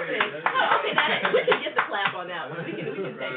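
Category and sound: sound effect, clapping sound effect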